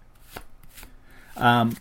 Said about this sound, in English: See, I really enjoy shuffling these cards. These are nice cards.